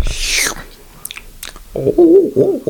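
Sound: sipping hot coffee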